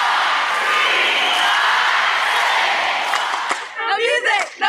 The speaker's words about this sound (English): Check this out. The crowd support was very helpful. They had our back, and they were counting the whole routine.